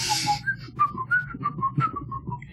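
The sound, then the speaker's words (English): Someone whistles a short melodic tune from a film soundtrack, a quick run of clear pitched notes stepping up and down, fairly loud over a low background hum. “We were making our second round of drinks, and they were whistling.”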